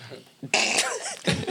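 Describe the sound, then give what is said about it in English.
A woman gives a couple of harsh, raspy coughs, the first long and rough, a shorter one following after a brief pause, with a faint voice murmuring at the start. “Say she need a cough drop.”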